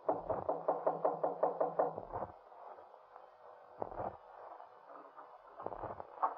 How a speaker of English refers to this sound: Just go up the stairs and knock on the door on the left.